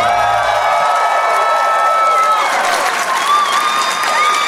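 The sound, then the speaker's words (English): A live audience at the Martha Cohen Theatre in Calgary, Alberta, claps and cheers steadily, a dense wash of applause with whoops and shouts rising over it, loud throughout. “How long has it been since someone's clapped for you?”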